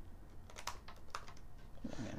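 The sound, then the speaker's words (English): A quick, irregular flurry of keystrokes clatters on a computer keyboard, fairly quiet, over a low steady background hum, with no one speaking. “My typing skills are so trash.”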